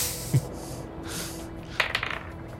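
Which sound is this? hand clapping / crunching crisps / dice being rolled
dice being rolled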